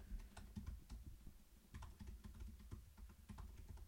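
Rapid, uneven computer keyboard typing, a flurry of clicky keystrokes with brief pauses between bursts and no voices, as a search for the original name of St. Paul, Minnesota is typed in.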